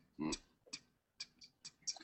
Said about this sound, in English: There is a ticking sound, and then a shuddering, and the legs begin to move, and then it springs up and stands motionless. Ooh. Well, that was useful. Hello? Do you speak? There's a ticking sound.